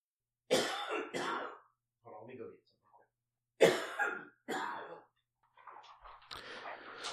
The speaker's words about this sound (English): He can't stop coughing, so he's going to get something to ease his coughing fit.